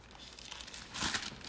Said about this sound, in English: Turning pages.